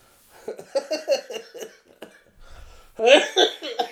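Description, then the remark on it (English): A loud fit of repeated coughing in quick bursts, with a short lull and a low rumble midway, then a harsher final run of hacking coughs. “So, I guess, oh man, once again, sorry for the coughing.”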